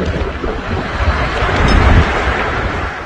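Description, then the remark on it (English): A deep, continuous roar of a violent tornado on a mountain in Shelby County, with debris falling, fills the air, steady and loud with a rough, rumbling wind texture, swelling slightly midway with no voices present. “Listen to that roar. This is a violent tornado.”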